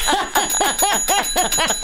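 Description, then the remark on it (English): A hand bell rings rapidly and loudly, about seven quick, even strokes in under two seconds, each with a bright metallic shimmer that overlaps the next. No voices. “Oh my God, you're going to use the bell so much.”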